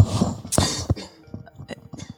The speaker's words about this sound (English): you can cut out this coughing if you want to when you listen back to this.